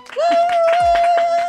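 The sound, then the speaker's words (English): Quick, rhythmic hand claps from a small group, loud, imitating audience applause, with a steady high-pitched whistle-like tone held over the clapping. “What, how's the applause sound like?”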